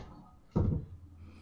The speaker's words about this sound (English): There's someone behind you. Is it? Sounded like the door was opening.